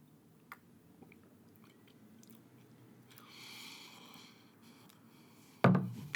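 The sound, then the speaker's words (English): A quiet sip of Suavecito tequila from a glass, with soft wet mouth sounds and a brief slurp, then a sharp thunk near the end as the glass is set down. “So let's take a sip now and see if the memory or the current experience lives up to the legend.”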